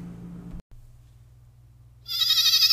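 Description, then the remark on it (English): A loud goat bleat sound effect bursts in near the end, strident and wavering, following a brief rumble and a low steady hum, introducing the Burke and Miz Goats of the Week segment. “The Burke and Miz Goats of the Week.”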